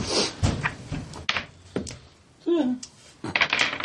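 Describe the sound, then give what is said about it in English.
Players roll percentile dice across a tabletop during a role-playing game, in several bursts of sharp, rapid clicks and rattles, with a brief murmured voice in the middle and more tumbling clicks at the end. “Everybody roll me a percentage.”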